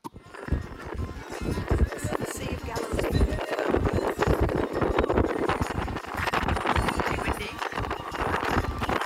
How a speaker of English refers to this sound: It's windy. Translation, it's very windy, but awesome.